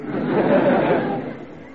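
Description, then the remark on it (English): A large crowd at a boxing match murmurs and chatters while waiting for the fight to start, a dense, steady wash of overlapping voices with no words standing out, easing slightly toward the end. “Yeah, that crowd won't wait much longer.”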